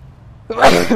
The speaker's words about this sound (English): Excuse me. I had to sneeze there.